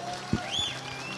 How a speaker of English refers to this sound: Give the Lord praise this morning, everybody. Go ahead. Thank you. Amen. One more time. Give the Lord a good shout of praise.